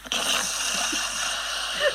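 A loud, continuous raspy snore, heavily processed into a harsh, buzzing drone that starts abruptly and holds steady for two seconds, with no talking.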